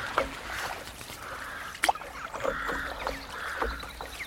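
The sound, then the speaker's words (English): Paddleboard drifting down the River Wye near Foye, before Ross: soft water lapping with a sharp paddle splash near the middle, while geese or ducks call faintly. No one speaks. “Drift gently down the River Wye on a paddleboard”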